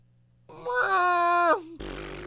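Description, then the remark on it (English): A voice imitates an elephant with one loud, buzzy, nasal trumpeting blare held for about a second, dipping at the end. A burst of rough static-like noise follows. “It's a pretty terrible elephant sound.”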